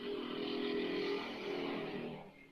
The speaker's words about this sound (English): Well, that was a motorbike, sorry. You just live on a highway.